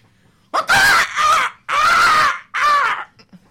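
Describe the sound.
A man's voice imitates a rooster crowing, four loud, strained cries in a rising-then-falling pattern, each broken by brief pauses, with the last phrase drawn out.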